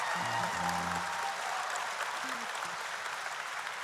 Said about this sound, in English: Oh, come on, you can clap a little bit louder than that.